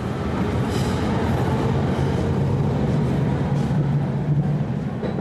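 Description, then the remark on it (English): Ambience at a German railway station in Germany, autumn 2012: a steady, loud low rumble of train noise with a faint hiss above it, continuous throughout with no clear voices standing out. “A German railway station.”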